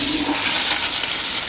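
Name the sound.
toilet flushing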